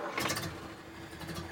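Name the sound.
car engine starting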